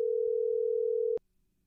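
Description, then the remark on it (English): A steady, unbroken telephone dial tone, heard while placing a phone call, hums at a single mid-low pitch for about a second, then cuts off abruptly with a click, leaving near silence. “All right, you ready to call him?”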